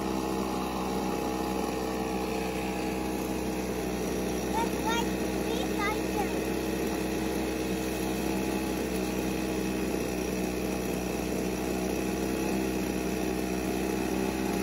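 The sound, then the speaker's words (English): A gas leaf blower, used by a boy to blow leaves, drones steadily and loudly from start to finish, its buzzing hum holding an even pitch with a few faint voices barely audible underneath. “Because as he's using this leaf blower, watch his knees that are just knocking in fear.”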